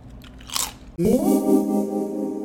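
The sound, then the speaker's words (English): A few crisp crunches of someone biting into Lay's potato chips, followed abruptly by a loud sustained musical tone that swells in and holds to the end. “Should we take one more crunch on one of our favorites?”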